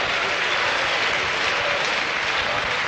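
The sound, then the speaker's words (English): A crowd claps steadily and loudly as a musician is introduced on stage, a dense wash of many hands applauding with no pauses, filling the whole moment. “God bless you for that wonderful, warm, and generous applause.”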